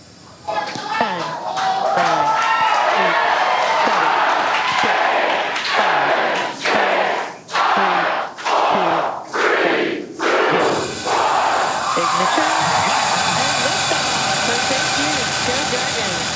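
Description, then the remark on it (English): SpaceX employees surrounding mission control in California cheer and shout loudly during the launch countdown as a dense crowd, their voices breaking into rhythmic bursts midway like a chant in unison, then swelling into a steady, sustained roar. “The countdown on the live stream was hard to hear because SpaceX employees in California were surrounding mission control, cheering.”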